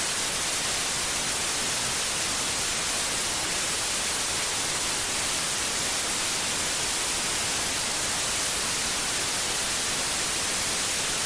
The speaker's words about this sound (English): Still got the static sounds, you hear me? Can y'all hear me now?